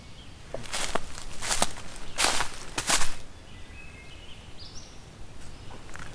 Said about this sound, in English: There it was again. Whip whip kind of call. Like that. Not even sure what the mnemonic is.